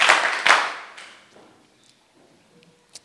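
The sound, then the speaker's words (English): A church audience claps its hands after an evening prayer, in a loud, dense burst that quickly fades out as people are seated, leaving a few scattered, faint claps and taps afterward. “Clap your hands together and you may be seated.”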